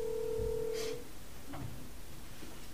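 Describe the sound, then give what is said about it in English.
A steady telephone line tone sounds for about a second, then cuts off with a soft click and faint line hiss, as a call connects to ask someone questions. Nobody speaks. “So let's call him and just ask him those questions.”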